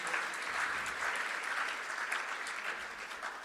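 A crowd claps steadily for several seconds, a dense, even wash of many hands with scattered sharper claps poking through, sustained at a consistent moderate loudness without fading.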